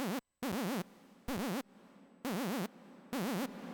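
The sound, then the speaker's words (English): Four short bursts of a bright, buzzy synth patch note with a fast, wavering vibrato from a square-wave LFO and heavy reverb, each cut off sharply and followed by a faint washy tail. There is no talking. “There's the patch with a fuck ton of reverb on it, just for fun.”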